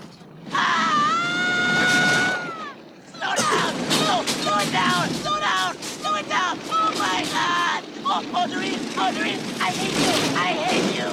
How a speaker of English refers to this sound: Probably like him doing the recording, the audio takes for this, right? Just screaming. He's just like, yeah, he's just probably like sitting on a stool in a fucking room. Recording the shit on a mic,